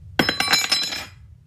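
A metal spoon falls out of someone's clothes onto a hard surface and clatters, bouncing in a rapid run of bright, ringing clinks that quicken and fade within a second. No voices.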